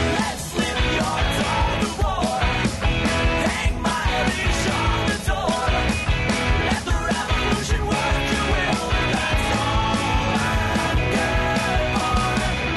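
A loud, dense rock song plays continuously, with driving drums punching through steady distorted guitars and shouted vocals, the energy staying high and even throughout.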